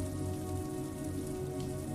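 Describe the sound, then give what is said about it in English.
Steady rain patters against window glass and streaks down it, a soft, continuous drumming with dense scattered droplet taps and a low hum beneath, nobody talking. “The rain continues to patter on the windows, streaking down the glass and making the colorful buildings on the street look like melted oil pastels.”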